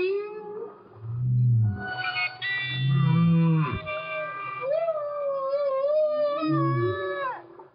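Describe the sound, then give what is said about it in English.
Low, moaning whale calls swell and bend beneath a sustained, reedy clarinet note rich in harmonics, which later rises slightly and holds steady as the whale seems to try singing more steadily alongside it. Both are fairly loud, with no talking. “But in this one example I showed you, you can really hear that as the clarinet plays a steady note, then the whale actually tries to go, he tries to sing in a more steady way than he usually does.”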